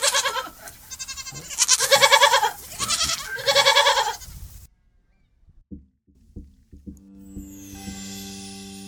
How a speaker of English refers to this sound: and lots and lots and lots of goats. So many goats.